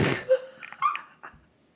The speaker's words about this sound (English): I got a cough too. I'm sorry.